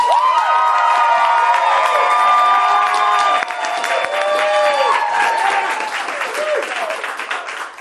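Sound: audience applauding and cheering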